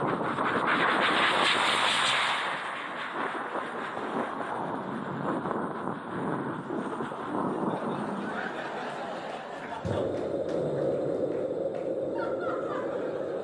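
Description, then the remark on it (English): A voice imitates the steady whooshing drone of an airplane cabin in first class, a continuous breathy roar that shifts near the end to a lower, rumbling engine-like hum imitating the back of the plane by the engine, with a hint of chuckling. “That's first class. Hang on. I'm in the back by the engine.”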